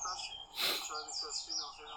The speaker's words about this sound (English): I hear birds. What, they're talking? Whose birds are chirping? It's like a video. It sounds like some tortoises getting it on. Yep, yeah, that's what it is. Somebody Googled up the video, yep.